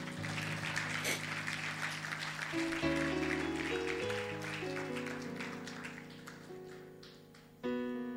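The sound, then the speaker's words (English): A crowd applauds, clapping for Jesus, with steady, dense clapping that carries on for several seconds, while sustained keyboard chords play underneath and shift pitch, a new chord striking loudly near the end. “Clap for Jesus.”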